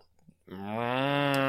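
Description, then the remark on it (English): After a short quiet moment, a person voices a long, low, steady moo imitating a cow, growing slightly louder as it holds for about a second. “Or listened to a cow actually moo?”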